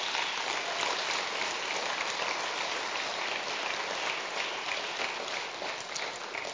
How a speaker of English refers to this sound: Aren't they amazing? You can give them a clap for that.